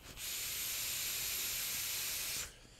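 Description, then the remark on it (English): A steady, airy hiss of a vape draw through an original Recoil RDA on an Aspen Modco Monarch runs for a little over two seconds at even loudness, then cuts off abruptly. No one speaks. “This is just what I'm vaping today.”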